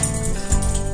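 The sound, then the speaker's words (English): A dog shakes itself off, a quick flurry of flapping and rattling, with collar tags jingling, that fills the whole second at a steady, fairly loud level. “And that's my dog shaking in the background.”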